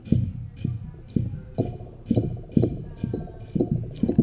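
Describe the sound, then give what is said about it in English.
A whiskey glass and a wine glass are struck as music in a steady, even rhythm, about nine clinking taps at roughly half-second intervals, each a bright chiming ring over a soft, hollow thump, with no talking, recorded live at the Prois Pheasant Phun ladies-only pheasant hunt. “I don't know if you know what this is, but basically it's a whiskey glass, a wine glass,”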